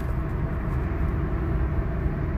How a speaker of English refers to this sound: I am imagining that you're in the subway, because I heard it too. Whatever that ambient noise is, I am here for. I love it.